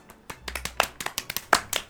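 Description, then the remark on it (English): An audience of sea turtles on folding chairs applauds when a turtle holds up an applause sign, with quick, overlapping claps in an irregular stream. The applause is moderately loud, with no voices over it. “A turtle holds up the applause sign again, and everyone claps.”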